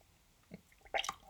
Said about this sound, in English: And for those of you who didn't quite get that, I did just spit out my water.